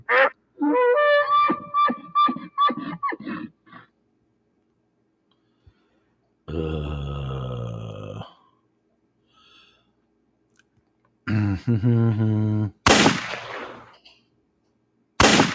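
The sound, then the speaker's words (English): Recorded anteater calls: choppy, nasal, honking bursts in three separate groups with silent gaps, followed by a harsh burst of hiss near the end. No one speaks. “Yeah, this is an anteater.”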